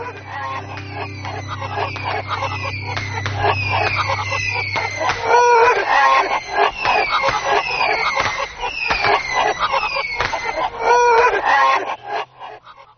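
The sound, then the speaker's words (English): A Golden Tower of the Backwards Flaming Chickens novelty firework spews a frantic stream of squawking, clucking chicken-like chirps mixed with crackles, loud and continuous for several seconds, over a low rumble that drops away early on. “backwards chickens were harmed in the making of this particular firework”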